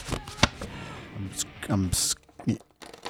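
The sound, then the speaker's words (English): A printed-out email on plain, uncolored paper being crunched and crumpled, a series of sharp, crackly rustling bursts at an uneven pace, with brief bits of voices in between. “Oh, it's like kind of crunching it.”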